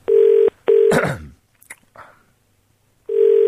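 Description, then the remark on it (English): A telephone ringback tone on an outgoing call to the caller's mother: a steady, buzzy double ring, a pause, then another ring beginning. It is loud, with a brief rustle and soft hush between the rings. “I've dialed it. Can we hear it ringing?”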